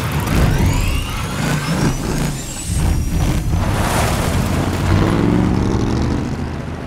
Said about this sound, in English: And when they're designing something that doesn't exist in real life, that's when things get really interesting. Right at the top of Mad Max Fury Road, the startup of Mad Max's car out in the middle of the desert.